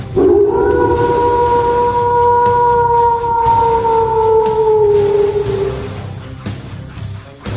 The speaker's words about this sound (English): The other wolves take note of this. They all rear up and howl.